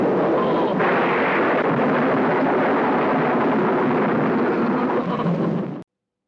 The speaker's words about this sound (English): So, as you heard from that clip, this film definitely brings in the lightning and the big electrical spectacle that comes into bringing the creature to life.